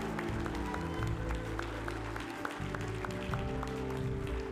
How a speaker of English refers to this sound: give that word a hand clap. Come on, give the word a hand clap.